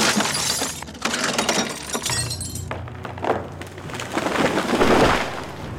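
An army of German tanks drives forward and crashes through a forest on December 16 in winter, in a loud, continuous burst of splintering and snapping, with heavy low rumbling underneath and repeated breaking impacts surging and fading over several seconds.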